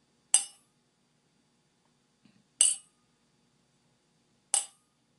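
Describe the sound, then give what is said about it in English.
Three bright, high-pitched strikes of a meditation bell, marking the start of a silent reflection meditation, spaced about two seconds apart, each a sharp metallic ting that fades quickly into silence, with no voices in between. “I'm going to make a bell sound, and we will start the silent reflection meditation.”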